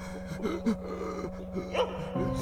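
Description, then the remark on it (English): A worried dog whimpers and lets out several short, high yips and whines in an anxious, uneven rhythm while licking a person's face and running in circles around them, over a steady low background hum. “Your worried dog licks your face and runs circles around you.”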